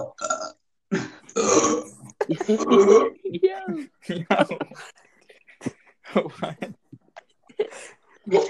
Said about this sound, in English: Well, you know that soda does make you burp, so that you have yeah, been expecting that.